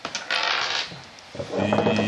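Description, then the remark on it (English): Dice clatter and rattle across a hard tabletop in a quick burst of clicks, settling briefly before a second rolling rattle rings out, fairly loud. “Well, dice are right here.”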